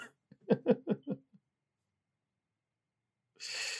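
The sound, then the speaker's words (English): A quick series of four or five throaty rasping bursts as someone clears their throat. After a pause comes a short breathy exhale. “I had to like clear my throat.”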